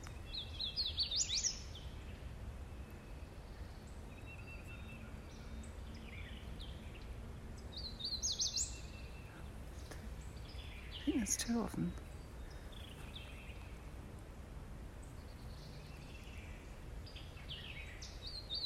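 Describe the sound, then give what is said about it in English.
Spring warblers sing in short, high, bright bursts every few seconds in Huntsville State Park, Texas, against a steady outdoor hiss, with a person speaking softly in the background. “It is the sound of spring warblers from Huntsville State Park in Texas.”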